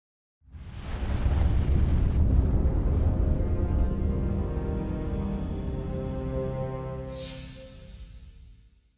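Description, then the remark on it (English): A short show bumper built from booming explosion effects: a heavy, rumbling blast starts abruptly, sustains loud low-end roar for several seconds, then slowly fades, with a brief hiss near the end. “All right, let's go to the bumper, and we'll get the hot seat, and we'll lift the mood.”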